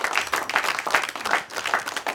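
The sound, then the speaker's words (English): An audience breaks into steady applause, many hands clapping at once in a dense, fairly loud wash of sound that holds level for a couple of seconds with no talking. “So if you could give them a round of applause for me, you wouldn't mind.”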